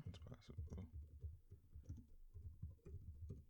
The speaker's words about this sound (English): Now you just hear typing.